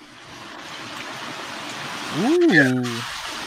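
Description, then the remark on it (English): A steady, even hiss of rain and wind rushes throughout, with a brief sliding vocal exclamation from a person rising and falling over the noise near the end. “That's rain and wind.”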